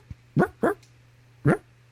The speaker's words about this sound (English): Got enough fucking dogs barking. I don't need a fucking dog with feathers barking.